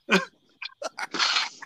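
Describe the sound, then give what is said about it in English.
A loud, harsh cough bursts out, followed by a few shorter sputtering coughs and a longer raspy, wet hack from someone who choked on a Monster energy drink while swallowing, with no talking. “Not owned by us, but let me tell you, that tastes kind of nasty when it gets caught right there and coughed back up”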